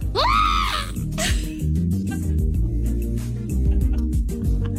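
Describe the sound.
A person lets out a loud, high, wavering screech imitating a seagull near the start, followed by a shorter cry, with steady music playing underneath throughout.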